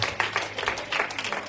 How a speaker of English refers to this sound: Usher board getting strong. Nursing board getting strong. Give God a hand clap. Amen.